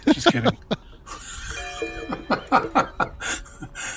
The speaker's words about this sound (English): So I just wanted to come back because the funeral's happening right now, as you can tell with the bells going on.